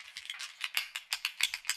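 Ballpoint pens being handled for ASMR produce a quick, irregular series of light plastic clicks and rattles, bright and crisp but fairly quiet, with no talking.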